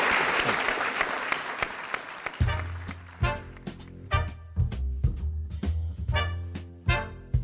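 An audience at the Gene Autry Center claps loudly for guest Russ Stanton, editor of the Los Angeles Times, in a dense, steady burst of applause for about two seconds, then it gives way to rhythmic music with deep bass notes and sharp percussive hits.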